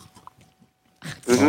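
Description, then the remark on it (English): Faint, irregular chewing sounds at first, then a burst of loud crunching of a crisp wafer candy bar, followed by a voiced, grunt-like murmur. “I got other stereo that, crunching going on. Wafer?”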